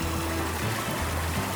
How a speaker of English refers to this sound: The water is building up like a tidal wave about to come crashing down on the shoreline.